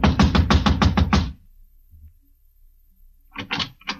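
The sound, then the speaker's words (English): A quick run of about six firm, heavy knocks on the door of apartment number 4, the manager's apartment, at 4 in the morning, then a quiet pause before two or three more clear knocks. “I walked over and started knocking again.”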